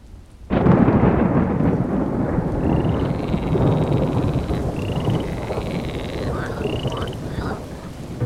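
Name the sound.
heavy rain with thunder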